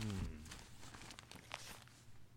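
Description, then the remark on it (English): Paper from a big stack rustling and crinkling in a string of soft, irregular scratchy bursts, following a brief low voice-like tone at the start. “Listen to that paper.”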